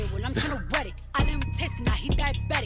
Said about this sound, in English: I think he hits the bell because, you know, around this time, he wants his fade out, so we got to be quiet.